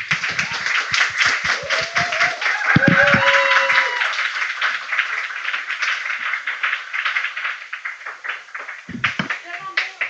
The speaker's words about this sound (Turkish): Devam edin alkışa. Alkışsız girme.